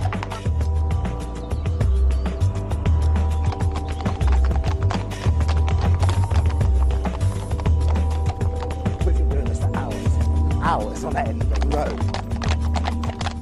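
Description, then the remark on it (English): A horse's hooves clip-clop in a steady rhythm over the low rumble and creak of a rolling horse-drawn cart, continuous throughout, with a brief whinny-like cry near the end. “Because that's what all the transport was, horse transport, and that is much kinder to horses.”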